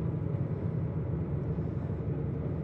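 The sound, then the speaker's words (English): A fishing boat's engine drones steadily, heard from a pitch-dark sleeping bunk aboard at night, a constant low rumble with a dense hum beneath it and no breaks or changes in pitch throughout. “The only thing is the noise of the engine, alright. But you get used to that.”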